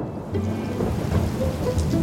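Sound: heavy rain falling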